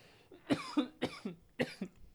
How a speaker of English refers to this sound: Why you cough with your tongue out? Why you cough with your tongue out like that?